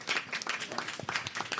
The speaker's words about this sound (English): Round of applause, everyone, for doing really well.